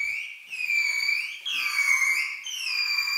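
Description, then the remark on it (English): A bottlenose dolphin in an experiment, wearing a floating plastic helmet over its head, makes its normal whistling call on a trainer's cue for a fish reward: three long, high tonal sweeps, each rising and falling in pitch with bright harmonics, separated by brief dips, steady and fairly loud with no talking. “In the experiment, the dolphin swims into this funny little floating plastic helmet-looking thing that's positioned over its head, and then the trainer asks it to make its normal whistling call for 2 minutes for a fishy reward.”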